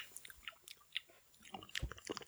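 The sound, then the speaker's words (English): Wet, crunchy chewing of a seedy melon bite, with irregular crisp crackles and soft squelches repeating over a couple of seconds, fairly quiet with no talking. “Give it a taste.”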